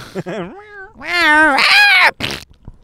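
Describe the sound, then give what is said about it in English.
A person imitates a cat with a drawn-out, wavering vocal meow, rising and falling in pitch, loud, followed by a short breathy tail. “Meow.”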